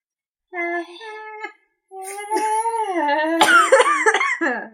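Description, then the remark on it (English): A voice performs exaggerated wheezy coughing during an asthma flare-up: a strained, tonal first burst, a short pause, then a longer run of raspy, hacking coughs with rising and falling pitch, fairly loud. “So just having an asthma flare up. We're just living and loving and being sensual and beautiful. Just with your asthma. Coughing up a storm.”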